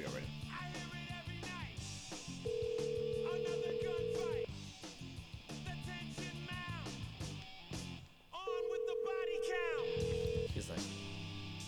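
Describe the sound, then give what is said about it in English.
An outgoing phone call rings twice, each steady electronic ring tone lasting about two seconds with a long pause between. Voices and other busy background sound continue underneath throughout. “who are we calling?”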